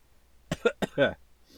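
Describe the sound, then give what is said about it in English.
A quick series of three or four rough coughs from a person who is unwell, each a short harsh burst with a voiced edge, ending in a faint breathy exhale against a quiet background. “you're probably going to hear sniffles, coughs, and various stages of nose blowing over the course of this hour”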